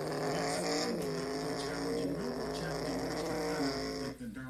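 A dense, continuous roar of seven racing truck engines revving up together at a green-flag restart on a narrow racetrack, their pitch climbing as they accelerate, loud throughout with no voices.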